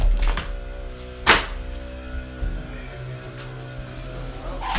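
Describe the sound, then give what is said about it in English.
A window is pulled shut with one sharp, solid thunk, followed by a couple of softer knocks, while the steady low engine drone of someone mowing the grass hums underneath. “Let me just close this window because there's somebody mowing the grass.”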